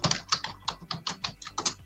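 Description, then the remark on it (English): Rapid typing on a computer keyboard by a person on the panel, a quick irregular run of about ten crisp key clicks, fairly quiet, with no voices. “Who be typing? The typing is from the person on the panel who did not see John Wick going, oh, shit, it's John Wick night.”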